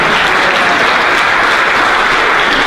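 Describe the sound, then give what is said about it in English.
Steady, dense applause from a large indoor group at a worship service, many hands clapping together loudly and evenly throughout, with no voices standing out above it. “You can clap for all.”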